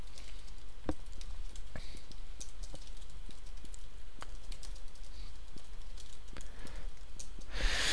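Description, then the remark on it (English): Irregular typing on a computer keyboard: quick clusters of light key clicks with brief pauses, heard alone over a faint low background hum and no talking. “It's literally dead, like dead air a little bit while I've been typing and keeping everything caught up and all of that.”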